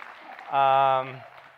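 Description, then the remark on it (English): Steady applause from an audience greeting a speaker fills the background, with a loud sustained cheer or shout rising over it midway before fading back into the clapping. “You guys are clapping, yeah.”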